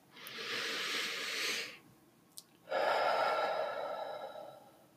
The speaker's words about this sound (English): Now I want you to take another deep breath.